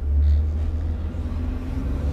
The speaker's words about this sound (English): I hate long trucks.